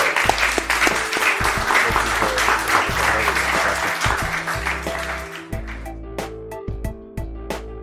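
A live audience applauds in a dense, steady wash of clapping that lasts several seconds, with music playing underneath as the clapping gradually thins out toward the end.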